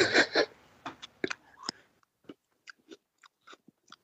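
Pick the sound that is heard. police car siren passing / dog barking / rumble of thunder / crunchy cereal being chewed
crunchy cereal being chewed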